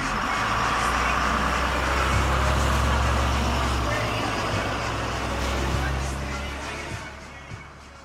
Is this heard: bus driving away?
yes